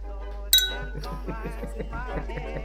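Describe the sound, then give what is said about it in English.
A single bright glass clink rings out near the start as glasses are raised in a toast, then people chatter and talk over it in a lively gathering. “Cheers, everyone. Cheers, everyone.”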